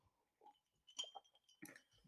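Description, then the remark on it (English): Glasses clink together in a toast: a couple of bright, sharp taps about half a second apart, each leaving a thin ringing tone that lingers briefly. “Can you cheers me, please?”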